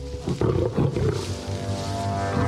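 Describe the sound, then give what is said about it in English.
A man-eating lion roars loudly, a deep, rumbling growl that surges in a couple of heavy bursts before settling into a sustained low snarl, with no one speaking. “A huge lion stuck his head in, seized Ungung Singh, dragged him out of the tent.”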